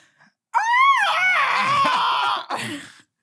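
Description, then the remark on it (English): A loud, high-pitched human squeal rises sharply and holds for about two seconds, shrill and strained like a pterodactyl shriek, then breaks into a shorter, rougher yelp. “I literally was a pterodactyl and I had that really high-pitched squeal that basically only dogs can”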